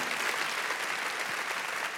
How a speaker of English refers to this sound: Now, I'm going to ask our church to make that the last time that we applaud during this series. And here's why, because I love that we applauded for people that we love them